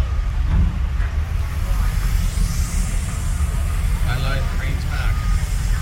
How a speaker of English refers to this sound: Especially since that one tractor is making a hissing sound. Because it's going to go from left to right. Well, not even. It's going to go from front to back on the left. Sorry, on the right channel.